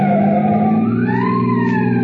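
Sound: police car siren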